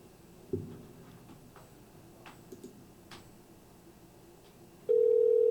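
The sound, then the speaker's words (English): An outgoing phone call is placed to the caller's sister from a number she does not know: after a few soft taps and clicks, a loud, steady ringing tone starts near the end and holds clear. “All right, it ring in.”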